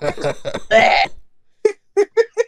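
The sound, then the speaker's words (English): A person coughs, trying to wake up: a drawn-out, rough vocal burst, then after a short pause four quick, sharp coughs in a rapid, uneven series. “That's just me. I'm coughing.”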